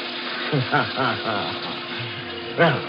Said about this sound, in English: I turned on the faucet in the sink, splashed and drenched myself from head to foot.